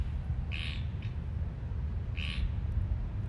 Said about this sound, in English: And the frog is... the frog wants to be heard. Its throat chakra right. is alive.